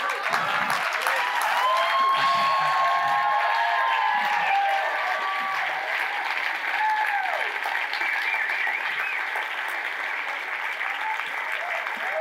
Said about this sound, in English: Stay standing. This applause is for you guys. This applause is not for me. It's from God. It's for you guys.